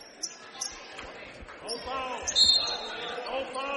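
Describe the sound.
A basketball dribbled on a court during a college game involving the Hamline Pipers, thumping in a steady rhythm about every half second, with crowd murmur, voices and a few high shoe squeaks around it.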